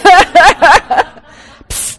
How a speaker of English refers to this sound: With her, I can go psst and have the water spray bottle. I think I should start to use it on myself.